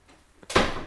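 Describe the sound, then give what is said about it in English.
A door shuts with a loud, solid bang after a brief quiet moment, its sharp impact ringing on briefly. No voices are heard. “I'm telling you guys, we've got to lock that door.”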